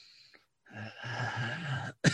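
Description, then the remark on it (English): A person imitates sniffing the air with one long, breathy inhale lasting over a second, fairly loud, followed by a brief sharp breath at the end; no words are spoken. “As you see, you see him just kind of just sniff the air.”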